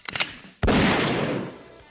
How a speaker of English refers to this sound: Please play the … Gunshot drop from ….